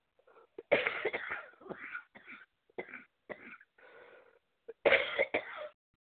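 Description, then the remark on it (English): A harsh coughing fit set off by lawnmowers, with repeated hacking bursts, some throat clearing between them, and a final burst of several rough coughs near the end. “Yeah, started me to coughing again.”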